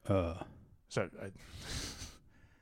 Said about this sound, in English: Still breathing a little heavily from riding my bike, and I was wondering if you were just like, the cold open was going to be me like panting sort of very, very quietly in the background.